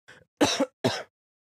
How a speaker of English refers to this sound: I can't wait till this fucking cough goes away.